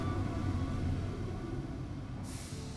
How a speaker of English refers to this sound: Your breathing comes out labored as you feel the vibrations of the train arriving under the platform.